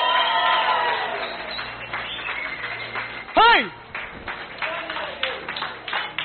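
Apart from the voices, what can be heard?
audience clapping and cheering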